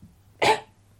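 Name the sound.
cough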